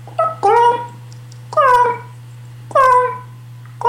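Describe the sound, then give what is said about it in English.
Three loud, drawn-out raven calls come at steady intervals, each a harsh, whining cry that slides downward in pitch, with a low constant hum underneath. “So I almost always listen to raven's sounds.”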